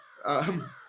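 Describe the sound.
A person imitates a crow's caw with a single harsh, drawn-out vocal squawk, fairly loud, lasting under a second.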